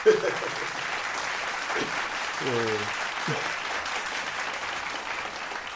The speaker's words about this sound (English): I'm clapping one up for Khalees because she's clapping too